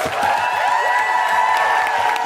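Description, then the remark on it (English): A loud, steady burst of audience applause for Coco Brown, with dense clapping, threaded with high cheers and whoops rising over the crowd noise for a couple of seconds. “Could you give a big, big round of applause for the wonderful Coco Brown?”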